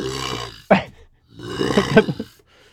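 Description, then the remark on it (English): A voice imitates the deep, tuba-like honk a dinosaur with a bird-like syrinx might have made: a drawn-out low groaning tone, a short sharp burst, then a longer rumbling honk that wavers in pitch before fading out. “If dinosaurs had syrinxes like birds, he says they could have made something like a honk. It's a honk, but it's like a tuba honk.”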